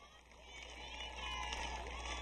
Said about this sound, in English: And we hear the Holy Father, the crowd welcoming the Holy Father and cheering him.